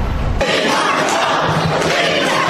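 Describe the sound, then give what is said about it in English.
A packed crowd at a public forum at South Shore International College Prep High School shouts and jeers all at once, strongly opposing housing migrants in their community. A loud, dense roar of overlapping angry voices holds steady for the whole clip, with no single speaker standing out. “The crowd voicing their opinion, strongly opposing the addition of migrants in their community.”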